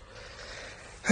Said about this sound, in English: Listen to his breathing. I can hear him in here. Oh, he's in a deep, deep sleep.